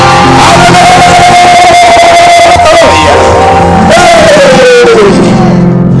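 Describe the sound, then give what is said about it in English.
An audience at a church service shouts and screams together for God in a loud, dense roar for several seconds, with one high sustained scream gliding down in pitch, then rising again before the noise tails off. “By the count of three, break some protocol and scream.”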